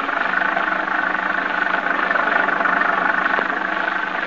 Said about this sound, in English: The muddy road sparkles in the flashes of lightning. The tall, dark trees sway back and forth in the fury of the storm like moaning lost souls. The little car lurches and bounces in its fight to keep the center of the highway.